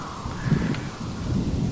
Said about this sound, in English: And you're starting to hear lightning strikes frequently, and fairly near the cabin in a lot of cases. And you can hear them hitting the trees, and they're just splintering and destroying them.